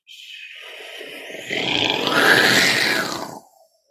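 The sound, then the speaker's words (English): A sound-design explosion pass-by, made by splicing a reversed copy of the explosion onto the start of the forward sound: a rumbling, roaring burst swells from a thin hiss into a loud, broad surge around the midpoint, then sweeps past and cuts off quickly, ramping rather than banging. “So in this case, the explosion went.”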